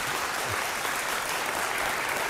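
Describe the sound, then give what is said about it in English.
An audience applauds steadily, a dense wash of many hands clapping at an even level for a couple of seconds, with no voices standing out. “You, obviously, those of you who applauded perceive the profundity of the question that I didn't.”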